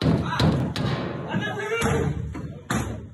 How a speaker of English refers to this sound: Then Ted Hui got a knock on the door.